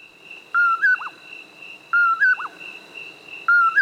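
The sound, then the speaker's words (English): A common poorwill calls three times at steady intervals, each a clear whistled two-part phrase, fairly loud, over a constant high insect-like drone in a quiet night setting. “It's the common poor will, a nocturnal hunter of insects. The easiest way to locate this species is to listen for its call.”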